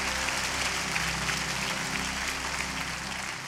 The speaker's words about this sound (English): Come on, can we give God one more round of applause? I think he deserves at least that.